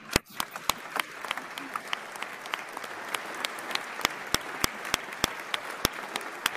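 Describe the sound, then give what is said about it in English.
An audience claps to show agreement with a statement about teachers, in a scattered, uneven patter of sharp individual claps over a steady hiss of crowd noise, lasting several seconds without settling into a rhythm. “Clap twice if you agree.”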